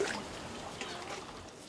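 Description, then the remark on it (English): A soft, steady trickle of running water from a communal water source, the only source of water for the many families living there, continuous and fairly quiet, with a faint hiss of background ambience and no clear voices. “Rules meant to preserve this. The only source of water for the many families living here.”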